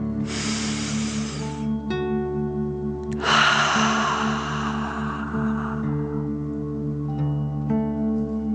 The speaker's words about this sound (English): Continue to feel the warmth of the energy, and let's take three more deep dragon breaths. Remember to breathe in through your nose, filling up your chest and belly, and then out, pretending you are breathing fire. Deep breath in and out.